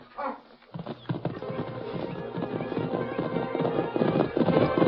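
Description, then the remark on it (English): Horse hoofbeats clatter in a quick, steady galloping rhythm, loud, continuing without a break for several seconds with no talking, as a man rides away on his horse. “Getting to his horse.”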